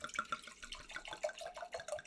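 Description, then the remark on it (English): J. Lohr Cabernet Sauvignon red wine pours steadily into a glass, a quiet, continuous gurgle with bubbly, rising glugs as it fills, and no voices. “Oh, that's a nice heady pour.”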